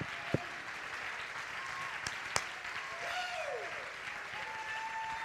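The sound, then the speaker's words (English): A large church audience, standing to their feet, applauds steadily throughout: a dense, continuous wash of clapping with a few sharp claps, scattered cheers and faint organ-like tones underneath. “Come on, if Jesus belongs in your house, you ought to stand to your feet and clap a moment and tell hell you're not leaving the church.”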